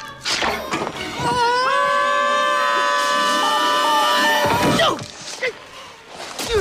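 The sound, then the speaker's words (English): Two men let out a long, loud sustained scream together for several seconds, pitched high and steady, with some background commotion before and after. “Whenever the two of them are screaming in unison, it makes me fucking break apart laughing.”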